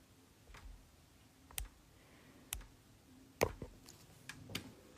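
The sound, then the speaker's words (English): Scattered computer keyboard clicks as someone invites a guest to join a call, a handful of sharp taps at irregular intervals, moderately soft, with no one speaking. “Come on, keyboard, work with me.”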